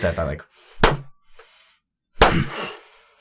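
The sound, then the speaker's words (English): Someone speaks briefly, then two sharp, loud hand claps land well over a second apart in a slow, deliberate rhythm, each with a short ringing tail. “Would he slow clap at the end, too?”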